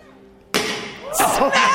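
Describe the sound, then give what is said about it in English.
A sudden loud crash as an armored glass front window is struck and smashed, spider-webbing out, bursting in after a quiet moment, followed by voices talking and exclaiming. “I mean, it just spider webs out. It smashes it.”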